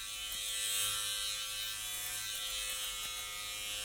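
Electric hair clippers hum with a steady, high-pitched buzz that holds an even level throughout, with no voices or pauses, as a barber cuts long hair short.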